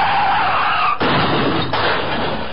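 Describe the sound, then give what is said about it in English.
Car tires screech in a loud, harsh skid, then two heavy crashing impacts about a second apart, with noisy debris-like clatter continuing after each hit. “Cars die.”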